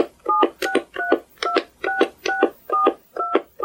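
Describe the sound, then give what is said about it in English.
A phone keypad sounds a quick series of about nine beeping tones as a registered 10-digit phone number is entered for GCast.com, each press a short clear dual-pitched beep at a steady, even pace, fairly loud with no talking. “Please enter the 10-digit phone number with which you registered.”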